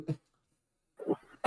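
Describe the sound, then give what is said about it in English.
A man who got worked up coughs in three rough bursts: a short cough, a long pause, then a longer hacking cough followed quickly by one sharp, forceful final cough. No talking. “Wow, he got so worked up, he's coughing.”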